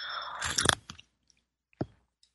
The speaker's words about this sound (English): I'm going to have a sip of my tea here.